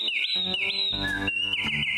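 A human whistle imitating wren song: high, sustained tones that slide up and down, with a brief lower dip midway. It is loud and continuous for about two seconds, with no talking.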